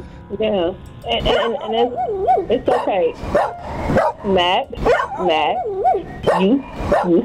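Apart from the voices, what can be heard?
dog barking and whimpering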